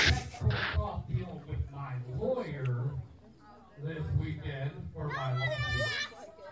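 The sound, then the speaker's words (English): Children's voices chatter and shout over one another in a lively stretch of play, with high-pitched calls rising near the end and a steady background hum underneath. “I love hearing the kids.”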